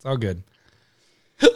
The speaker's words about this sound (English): No, you need peanut butter when you have hiccups.